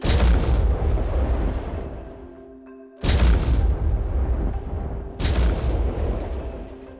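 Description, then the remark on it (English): Three massive, booming footfalls land about two seconds apart, each a deep rumbling thud that lingers and slowly fades before the next heavy stomp of a giant 30-foot, 5-ton dinosaur tromping through dry forest. No one speaks. “Today, I'm stomping, tromping through the dry forest, which is my preferred habitat.”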